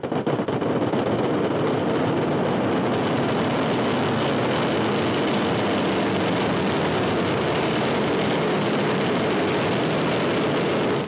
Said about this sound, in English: The mighty Ariane 5 ECA roars into the sky over Kourou. 49 seconds into the flight, Ariane 5 has already broken the sound barrier here in Kourou.